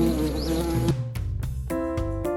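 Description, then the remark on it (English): A loud fly buzz, of the pet fly Fly Guy in the book Fly Guy's Ninja Christmas by Ted Arnold, drones steadily, its pitch dipping and wavering partway through before breaking into pulsing, stuttering bursts, with no talking. “A boy had a pet fly. He named him Fly Guy. Fly Guy could say the boy's name, Buzz.”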